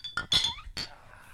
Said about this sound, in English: Oh, cheers, guys. Cheers. Bring it in.